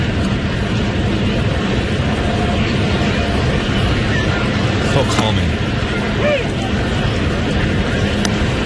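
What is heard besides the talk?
airplane flying overhead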